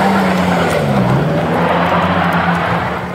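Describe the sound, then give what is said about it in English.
A car engine revs hard while tires whine and spin, struggling for traction as drivers try to get out of Horseshoe Bay and up to Highway 1 in West Vancouver, a steady loud droning roar with a wavering pitch that strains continuously for several seconds, with no one speaking. “Drivers were spinning their tires, struggling for traction to get out of Horseshoe Bay and up to Highway 1 in West Vancouver.”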